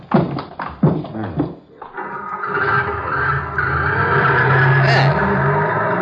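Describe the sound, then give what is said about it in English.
Brief talking gives way to a jeep with side curtains starting to drive, a steady, loud motor rumble with a rising whine that holds for several seconds as the vehicle moves off. “Side curtains on this jeep, and it's something Orlando must be used to seeing.”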